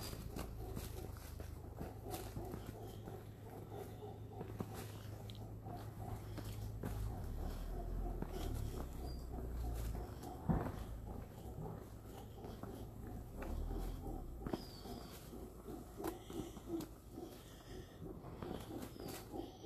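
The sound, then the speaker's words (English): Howler monkeys roar far off in Costa Rica in a low, droning chorus that runs steadily through the whole stretch, with faint outdoor rustling and scattered footsteps during a walk. “Are those the howling monkeys? Yep.”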